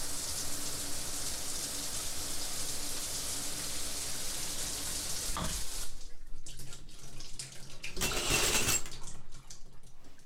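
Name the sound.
shower water running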